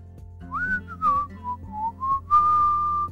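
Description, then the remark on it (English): Someone whistles a short melody while walking a trail through the hills, a string of gliding notes rising and falling before ending on a long, steady held tone, clear over a low background hum. “As she whistled through the hills following this trail that she had gone up and down probably 100 times”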